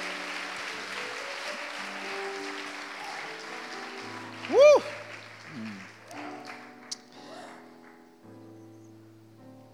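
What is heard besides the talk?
audience applause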